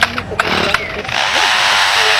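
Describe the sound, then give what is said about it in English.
A lyrebird mimics a chainsaw: a steady, loud, buzzing mechanical whine that rises and holds, opening with a few sharp clicks and rattles before the sustained engine-like drone. “That is a Lyra bird imitating a chainsaw.”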